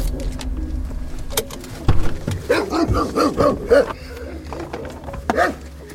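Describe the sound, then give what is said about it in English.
A Rottweiler gives a short series of deep, gruff barks, with a final bark a moment later over steady outdoor background noise. “Oh boy, there's a Rottweiler. He's bigger than Diesel.”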